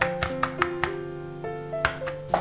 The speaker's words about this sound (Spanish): Y terminar de cubrirlos con el chocolate. Volver a golpear un poquito para repartir el chocolate.